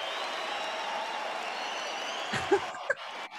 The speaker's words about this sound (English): That goes on and on. That's the big applause.